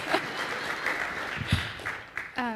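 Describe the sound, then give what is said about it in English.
An audience claps steadily, a dense wash of many hands patting at once for a couple of seconds, with a brief voice rising at the very end. “You can clap.”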